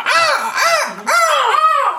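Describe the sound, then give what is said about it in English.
A voice imitates a bird's squawk, letting out four loud, harsh, rising-and-falling cries in quick succession, with no talking in between. “A song about a bird.”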